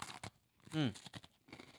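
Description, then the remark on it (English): A few crisp crunches from biting into a donut-flavored Oreo cookie, broken by a short voiced murmur in the middle. “The taste of the donut is what I'm tasting, but it's just crunchy.”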